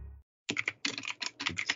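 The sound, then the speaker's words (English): Rapid clusters of computer keyboard keystrokes clatter in quick bursts, a brief low rumble fading out just before the typing starts. “Gonna have typing in the episode, boys.”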